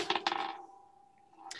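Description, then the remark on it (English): A twenty-sided die (d20) is rolled for a perception check. It clatters onto a hard tabletop with a few quick clacks, then a thin ringing tone lingers as it spins and settles, followed by one last small click. “I'll roll the good d20 just to be safe.”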